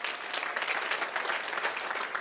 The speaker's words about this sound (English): let's give our teachers a round of applause. Let's give the leadership of House of Praise a round of applause.